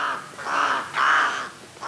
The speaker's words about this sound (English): Alaskan Athabaskan and Inupiaq peoples follow the gurgling calls of ravens to find game, and leave the carcass for the raven in return.